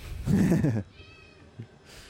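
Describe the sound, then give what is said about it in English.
A cat gives a single drawn-out meow lasting under a second, clear, followed by quiet background noise and a faint soft thump. “The cat agrees.”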